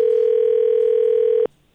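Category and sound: signal or alarm, telephone dial tone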